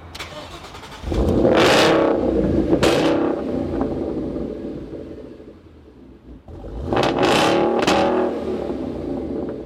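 A Roush Stage 3 Mustang with a Coyote engine revs hard twice, each burst roaring up loud with a sharp high-pitched edge before dropping back to a rumbling idle between them. No one speaks.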